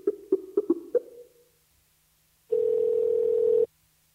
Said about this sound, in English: Come on, pick up. It's ringing.